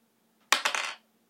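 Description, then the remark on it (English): Dice clatter across a hard table in a quick burst of sharp rattling clicks that tumble and settle within half a second, fairly loud, with no talking. “All right, roll that kick-ass roll.”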